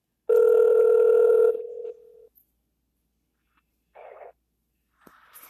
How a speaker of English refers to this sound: making a quick phone call.